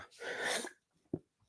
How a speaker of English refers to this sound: I had a little sneeze there. Sorry about that.